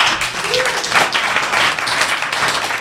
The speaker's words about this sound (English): Did that get an applause?